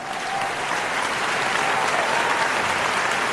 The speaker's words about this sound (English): I am falling in love with this, and it's all thanks to you guys. So give yourselves a round of applause.